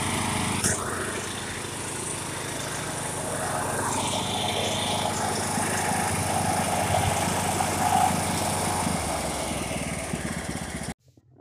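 A riding lawn mower engine runs steadily while someone mows, a loud, continuous rumbling drone with a rattly buzz that holds for about eleven seconds before cutting off abruptly.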